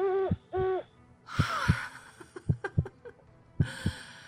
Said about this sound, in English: Peace, it was the owl that shrieked.